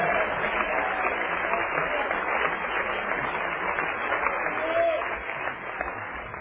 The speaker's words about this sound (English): Everybody clap your hands and shout yes to the Lord.